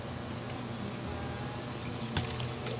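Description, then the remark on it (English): Someone takes a quiet sip of water, with soft liquid sloshing and a brief slurp near the end over a steady low background hum. “A little water.”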